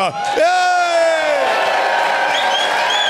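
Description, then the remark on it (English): The audience of the show Doug Loves Movies cheers loudly as if its theme song just ended, with high whoops and shouts rising over a steady wash of applause and excited voices, sustained for a few seconds. “Well, first we got to pretend the theme song just ended and everybody's cheering.”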